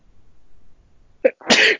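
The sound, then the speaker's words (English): A single loud sneeze: a short sharp intake at the start, then an explosive breathy burst lasting about a quarter second, with near silence before it. “Bless you.”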